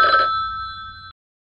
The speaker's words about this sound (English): Uh-oh. It's a phone. What?